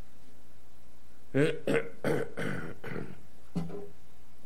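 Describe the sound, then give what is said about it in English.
An embarrassed-sounding cough from the character Ford: a quick cluster of rough, throaty bursts, then a pause and one final smaller hack, with no one talking. “Mostly harmless, admitted Ford with a slightly embarrassed cough.”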